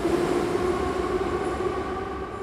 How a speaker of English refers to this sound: But now the metro trains are running again. Commuters and families dart in and out of the aging rail cars.